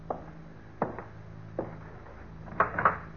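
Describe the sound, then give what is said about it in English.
A door is handled and pulled open: a series of wooden clunks and latch knocks, with a louder double rattle near the end, all over a low steady hum and no talking. “Ain't you going to open the door?”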